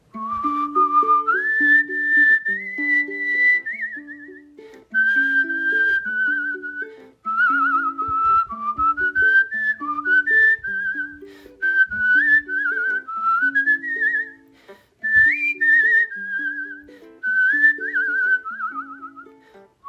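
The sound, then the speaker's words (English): A person whistles a lively, bright melody with quick pitch bends and trills, clear, over a light bouncy musical accompaniment, with no one talking. “When we come back, we'll whistle along to a few more tunes and hear more of your But Why theme song whistling.”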